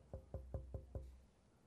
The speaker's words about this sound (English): She don't want to disturb anybody, so she's a soft little knocker.